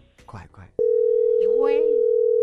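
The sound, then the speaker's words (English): A phone's ringing tone starts after a moment of quiet talking, a loud, steady electronic hum that holds unbroken to the end while a voice murmurs over it. “Okay, it's ringing.”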